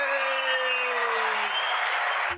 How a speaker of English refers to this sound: Okay, you can do the laugh track, but that whole booming 70,000 football stadium crowd was a little bit over the top, but that was funny